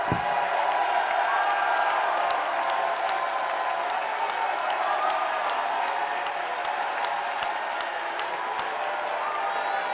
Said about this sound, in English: It says, oh, clap your hands, all ye people, and shout unto God with the voice of triumph.